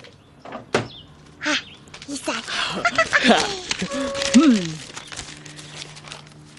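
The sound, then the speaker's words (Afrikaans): A drawer scrapes open, followed by a few seconds of clattering and rustling as things inside are rummaged through in search of an invitation, with short vocal grunts and murmurs mixed in. “Ek het dit hier in die laai geberg.”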